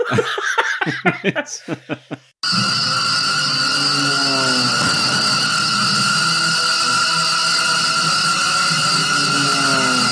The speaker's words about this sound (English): because all of a sudden it's like a Luftwaffe attack. It's just the sound effects of planes crashing, and it's all kinds of stuff.